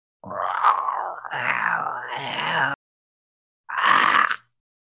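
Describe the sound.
A person makes growling monster voice noises: two long, raspy, guttural rumbles in a row, a brief silence, then a shorter third growl. Loud and harsh, with no words spoken.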